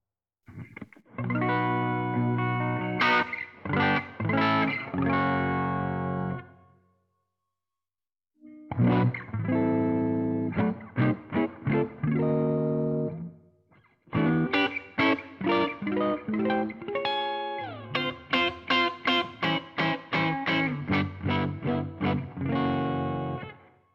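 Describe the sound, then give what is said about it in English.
An electric guitar played through an amp with a clean, dry tone, pedal off, captured through the A to Ds of a DiGiCo S31 console with no EQ and a little console reverb, strumming chords and picking notes in three phrases separated by short pauses, fairly loud with no voices. “So the reverb is from the Digico console, not because the amp doesn't have any. All right, so here's our dry sound, and then I'll kick the pedal in.”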